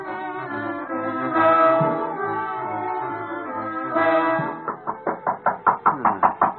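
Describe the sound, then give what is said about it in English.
A long sustained tonal drone, like music or a horn, gives way to a quick, steady series of about ten loud raps on a door, evenly spaced. “The door. Somebody sees a knock.”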